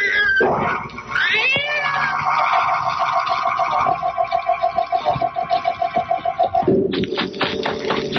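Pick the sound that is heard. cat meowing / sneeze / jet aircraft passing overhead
cat meowing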